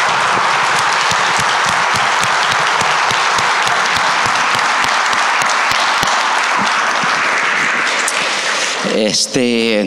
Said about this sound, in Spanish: Quizás no lo pueda ver a todos, ¿verdad? Pero que se pueda oír, ¿verdad? So, con un fuerte aplauso en forma de saludo a nuestro pastor.